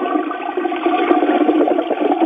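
A toilet flushes in one continuous rushing, gurgling swirl of water, fairly loud and close, sounding slightly muffled and thin as if heard over a phone line, with no voices.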